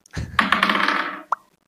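A dice container pops open with a soft thump during a tabletop role-playing game, for a perception check roll, then a bright rattling, ringing clatter for about a second, ending in one sharp, crisp click. No voices.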